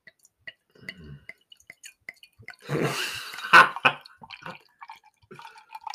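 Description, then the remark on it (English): Saison beer poured from a 750ml bottle into a glass: a brief gush of liquid, with scattered drips, taps and small glassy clinks before and after. “Right, let's pour this.”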